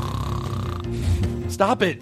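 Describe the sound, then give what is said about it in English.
A snoring sound effect plays, a low, droning rasp lasting over a second, followed by a brief burst of someone talking over it. “Don't play snoring sounds and don't play the blah, blah, blah song.”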